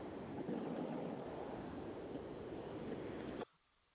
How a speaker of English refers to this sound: Hello? I heard the ocean. Weird. Well, it wasn't me at the ocean. Somebody was, they're on Skype.